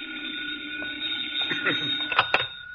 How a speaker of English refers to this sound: Oh, phone.